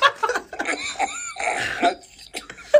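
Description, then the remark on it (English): Coach Mike Leach, who has COVID, gives a series of harsh, raspy coughs and throat-clearing noises, fairly loud, coming in several uneven bursts over a few seconds with no talking. “That's his coughing scene.”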